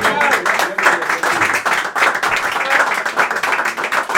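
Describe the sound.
A crowd applauds steadily, dense rapid clapping holding at an even, fairly loud level for about four seconds, with some voices mixed into the noise.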